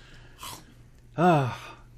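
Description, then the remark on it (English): A voice imitates the shark from the film Jaws chomping and crunching: a quick breathy huff, then a louder, strained vocal crunch that slides downward in pitch, fairly loud. “Chomp, chomp, chomp. Munch, crunch, munch, crunch.”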